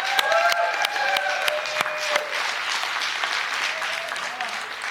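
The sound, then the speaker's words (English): A crowd breaks into sustained applause for a church worship team, dense clapping with a few sharp claps and whistles standing out early, holding steady and loud for the whole stretch. “You have an amazing team, so give them another round of applause.”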